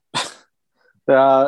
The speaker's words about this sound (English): There were dogs barking in the background, though.